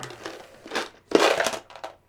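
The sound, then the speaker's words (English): Paper being unfolded and crinkled, in several rustling bursts with a louder crackling stretch in the middle, then a few softer crinkles at the end. “He needs to open his paper.”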